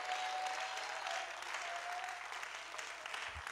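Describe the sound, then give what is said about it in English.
An audience in a church claps hands, a dense, sustained wash of many overlapping claps at an even level throughout, with a faint steady tone humming underneath. “Somebody clap your hands and shout amen tonight.”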